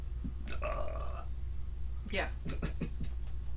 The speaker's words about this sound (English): Burp.